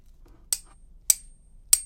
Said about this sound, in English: I've actually got a hammer here. Must be something that will ding when I hit it. What about this?